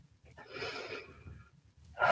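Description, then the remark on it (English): A slow, deep Lamaze cleansing breath: a long, airy inhale of about a second, a short pause, then the forceful start of an exhale. No one speaks. “Just call it a cleansing breath, and then...”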